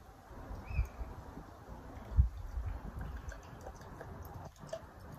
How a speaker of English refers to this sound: Oh, big can, long pour, big glass. I like these Bridge Road glasses. Look at that. See, they hold these 440ml cans.